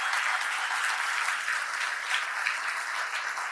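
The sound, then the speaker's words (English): A crowd applauds steadily, a dense wash of many hands clapping at an even, sustained level with no voices breaking through. “And can we just give a round of applause to God for just making all this happen?”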